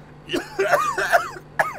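A short run of raspy, voiced coughs, about four in quick succession, moderately loud, with a brief pause before the last one.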